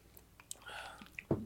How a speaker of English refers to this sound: Well, do we sip? Let's sip. Yes. Sips.